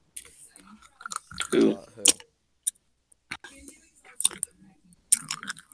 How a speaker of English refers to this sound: Bro, I don't want to hear bottle cap chewing ASMR. You smacking on your food. Bro, he's just smacking that bottle cap over there.